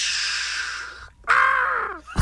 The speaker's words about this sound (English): Why is there a bird at the end of it? Well, it's a lightning strike, and the bird gets hit.